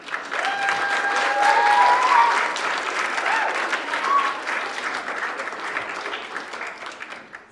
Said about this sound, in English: So first, let's give you a round of applause.